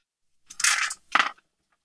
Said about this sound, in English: Let's roll two dice. Woo!